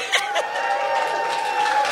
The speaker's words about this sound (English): Clapping. There's a lot of people not clapping.